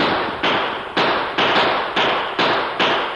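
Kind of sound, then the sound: sound effect, gunshots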